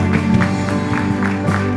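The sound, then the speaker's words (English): A church audience claps in a steady rhythm and shouts with loud, continuous cheering during a worship celebration, over sustained, bright music, with regular sharp bursts of clapping throughout. “let's give her a shout, a clap.”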